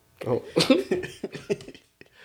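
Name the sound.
cough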